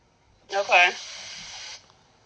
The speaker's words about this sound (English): Okay. Let me step away. It might be the water running in the background, too.